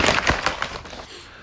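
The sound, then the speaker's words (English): A Taco Bell takeout bag is dumped onto a coffee table at home: a burst of crinkling paper and several quick thuds and clatters over about a second, then fading to quiet. No one speaks. “The Taco Bell bag is on the coffee table. I'm about to dump this out and see what I got.”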